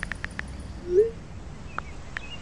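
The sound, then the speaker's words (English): Outdoors by a ticket booth on a pretty nice day, a steady rush of wind fills the background while a single clear bird chirp rises briefly in the middle, with a few faint, short chirps or ticks scattered around it. “The wind's loud, but you can hear the birds.”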